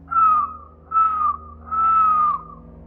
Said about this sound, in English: And as we were focused on each other, I heard that darned whistling.